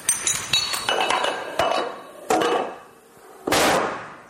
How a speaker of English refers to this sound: the audio of the chain reaction here, and you can hear that familiar click, click as the dominoes fall into each other, but you can also hear the sound changing as they get larger, and then finally that big thud when the largest one hits the ground.